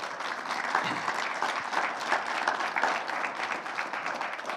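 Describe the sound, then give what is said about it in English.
A church audience breaks into steady applause for the pastor, a dense wash of many hands clapping at an even level for several seconds with no voices standing out. “If we can give him a round of applause.”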